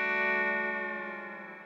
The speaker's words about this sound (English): Breathe deeply. I just did a gong. Boom. That's it.